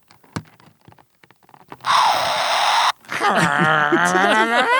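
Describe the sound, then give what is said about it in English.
A few plastic clicks, then an Evil Venom talking toy lets out a loud, steady hiss for about a second, cut off abruptly and followed by a warbling, growly electronic voice. “Venom hisses.”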